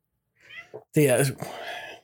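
A cat meows: a couple of soft, brief chirps lead into one loud, drawn-out meow, followed by a quieter trailing sound.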